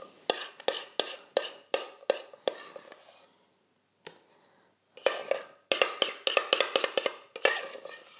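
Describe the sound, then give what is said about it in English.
Half of the chocolate custard being poured onto the bottom of a bowl as the first layer of a Zuppa Inglese, heard as a quick series of scraping, clinking spoon strokes against a pot, a brief quieter pause midway, then more rapid scrapes. No voices. “So in our bowl, we pour half of the chocolate custard on the bottom.”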